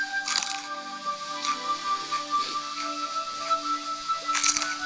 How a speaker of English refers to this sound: You hear that crunch? A rainforest pepper. That's my third bite. Just like the rainforest, she's just so full of goodness and juices and all those pepper oils with no real spice yet.